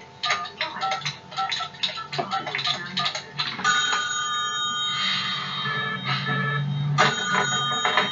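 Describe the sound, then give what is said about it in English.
A telephone bell rings loudly, a rapid metallic trill in repeated bursts that settles into a longer continuous ring, with no voices over it. “so glad you called.”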